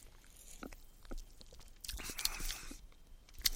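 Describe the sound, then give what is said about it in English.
A quiet sip of Steel Reserve Spiked Watermelon malt beverage: a brief airy slurp in the middle, surrounded by small wet mouth clicks and a soft swallow, with no talking. “So let's take a sip here and see what we get.”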